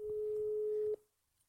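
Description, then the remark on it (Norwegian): A steady telephone ringback tone during a call to someone's dad holds a single pitch for about a second, then cuts off abruptly, leaving near silence with faint background rustle. “Kan vi ringe og spørre pappa?”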